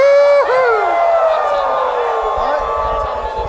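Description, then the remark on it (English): A crowd at a live bluegrass show broadcast on 89.5 KQAL's Boats and Bluegrass howls together like wolves, a loud overlapping chorus of long, wavering cries that slide down in pitch and blur into a sustained, siren-like wail lasting several seconds. “Can you guys howl like a wolf?”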